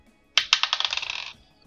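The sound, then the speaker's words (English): Dice rolling on a table, rolled to hit with a storm hammer attack in a tabletop game: two sharp clacks, then a quickening rattle of bright clicks that settles and stops after about a second, with no voices. “So I will roll to hit.”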